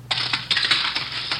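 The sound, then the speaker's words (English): A telephone is thrown out into a hallway and crashes to the floor with a burst of harsh, jangling clatter, several sharp metallic impacts spread over a second and a half, loud and with no voices. “Who threw that phone out in the hall?”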